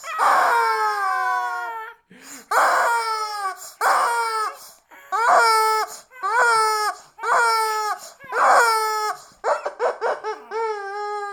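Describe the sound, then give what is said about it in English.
A rubber chicken toy squeezed over and over, letting out about eight loud, shrill, honking squawks in quick succession, each sliding down in pitch, with no talking over it. “Rubber chicken blowjob.”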